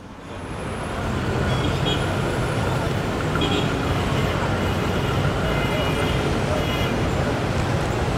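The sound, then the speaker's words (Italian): Busy city road traffic swells in over the first second, then holds as a steady, dense roar of engines and passing vehicles, with faint indistinct voices mixed into the din. “Allora, questo è un podcast e voi state ascoltando i classici rumori di traffico e io sto facendo finta di essere in mezzo al traffico.”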